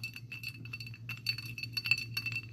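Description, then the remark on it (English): Continuous light clinking and rattling of a spoon against ice in a glass as a cocktail is stirred to chill it, a steady stirring sound with faint tinkles, over a low background hum. “We're pretty much done with the drink, other than kind of like we did with the Perry glass. Just get in there, stir that up.”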